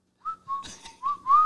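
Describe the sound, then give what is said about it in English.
A person whistles a short run of four or five notes that slide up and down in pitch. The whistling is clear, with no talking. “Also in West Virginia, it is illegal to whistle underwater.”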